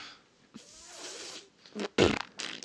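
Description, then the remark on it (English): A voice imitates fart noises with the mouth to give the answer "farce" in a true-or-farce cat trivia quiz: a long, raspy, sputtering blow followed by several shorter, louder bursts of spitting, buzzy noise. “After about 4 gross sounds, the right answer came out. It was a farce noise.”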